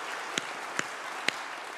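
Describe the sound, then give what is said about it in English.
A crowd applauds steadily, a dense wash of clapping with a few sharper, closer claps standing out every half second or so. No one speaks. “Would y'all say amen and applause?”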